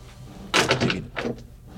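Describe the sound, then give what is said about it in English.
A door opens and shuts: a rattling burst of clunks, then a shorter second knock as it closes, with faint hum and no voices. “Someone will have to let me in.”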